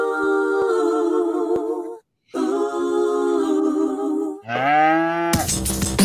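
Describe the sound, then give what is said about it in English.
A cow moos loudly: two long, droning moos with a brief pause between them, then a third call that rises in pitch before a short burst of harsh noise. “We want to just do Moo Moo real quick.”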